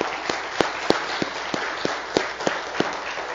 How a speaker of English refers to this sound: Men, I want another applause for the women of God right now. Just you men.